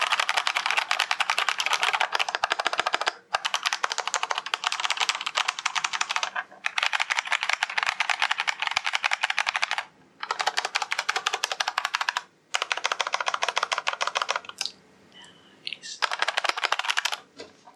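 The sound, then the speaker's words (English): Rapid, continuous typing on a mechanical keyboard with smooth yellow linear switches, a dense stream of clacks broken by a few short pauses, with no voices. “it's just an extra $5 to have the linear ones in yellow. And as a result of that, they're a bit smoother, less pressure”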